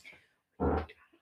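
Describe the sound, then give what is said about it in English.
A single loud, low, buzzy squeak from a chair that sounds like a fart, lasting about a quarter second, with faint soft sounds before and after. “I'm sorry, it wasn't. It was my chair.”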